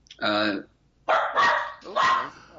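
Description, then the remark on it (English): A dog barks three times: a short tonal yip, then two longer, rougher barks after a brief pause, loud and clear with nothing else behind them. “There's dog.”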